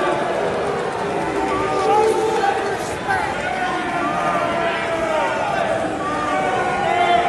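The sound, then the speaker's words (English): A large crowd boos Mitt Romney loudly and continuously, a dense roar of many overlapping voices with drawn-out, wavering tones sustained throughout; the booing lasted a minute and 30 seconds. “All right, that's, I could go on because it lasted for a minute and 30 seconds, the booing of Mitt Romney.”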